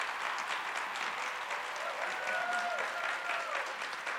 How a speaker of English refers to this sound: So speakers, if you can, line up right here on the red line. Everybody give them a big round of applause as they take their bow.